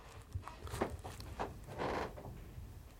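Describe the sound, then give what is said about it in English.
Several soft, uneven footsteps thud upward on stairs during a ghost hunt, with a longer low creak of wood partway through that seems to come from a secret room; no one speaks and the steps stay quiet. “Oh, that's just someone coming up the stairs. That creak sounded like it was coming from the secret it room.”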